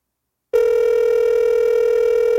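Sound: phone call ringing tone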